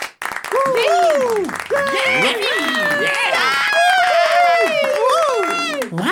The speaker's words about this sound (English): I'm going to bring her out. Let's give her a nice round of applause. Boys and girls all over the world, give it up for Chi-Chi!